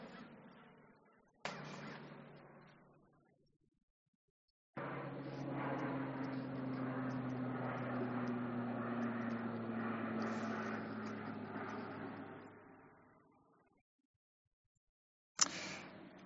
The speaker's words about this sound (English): let me pause for the plane.